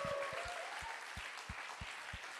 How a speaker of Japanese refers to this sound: Come and give the Lord a great hand. 神様に拍手しよう。